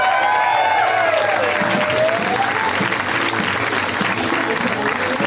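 An audience applauds as comedian Bobcat Goldthwait is introduced, with steady, loud, dense clapping that holds for about five seconds, with a few rising whistles and cheers woven in near the start.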